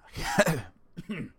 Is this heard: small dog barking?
no